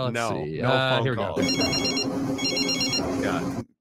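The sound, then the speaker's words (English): A telephone rings on an unanswered call in two repeating bursts of a bright trilling bell tone, heard over a steady background murmur, following a brief moment of voices at the start. “Can you guys do a phone call with FSU, please? Yeah, let me get the phone out here.”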